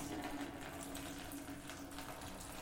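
Hot noodle water is poured out of a pot into a bucket, a continuous splashing, gurgling stream with a low hum underneath, moderately loud, with no voices.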